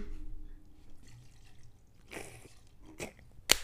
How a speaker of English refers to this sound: You poured mad Ray and Nephew in there. I saw you.